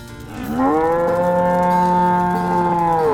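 cow mooing

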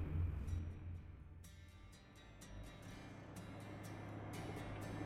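truck engine running

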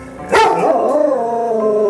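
dog barking and howling

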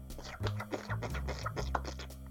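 hands clapping

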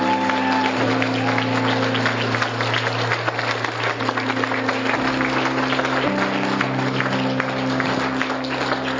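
audience applause

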